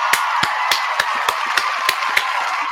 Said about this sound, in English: First things first, let's go ahead and get the round of applause together for Premier Cocktails.